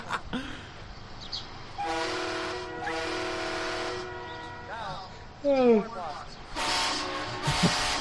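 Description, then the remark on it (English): A loud, chord-like train horn on a truck sounds in two sustained blasts, a short one then a longer one, followed by excited voices and a burst of hiss. “They got train them. Horns? Yeah. I don't think so because they got them. Oh on my truck.”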